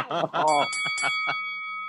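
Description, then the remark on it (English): A bright bell rings and its clear tone lingers, sounding under people talking before ringing on alone as the voices fade. “You were rudely talking over her bells.”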